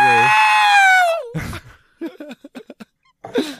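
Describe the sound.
A person lets out a loud, sustained high-pitched screech lasting about a second, mimicking a scream, followed by a breathy burst and a few quick chattering vocal sounds.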